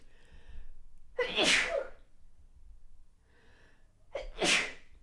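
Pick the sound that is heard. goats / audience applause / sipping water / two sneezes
two sneezes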